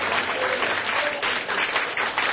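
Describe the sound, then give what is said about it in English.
An audience at a Christian worship service applauds in praise right after a prayer, many hands clapping steadily in a dense, continuous wash of bright claps at an even loudness, with no distinct voices above it. “Clap them hands and praise them.”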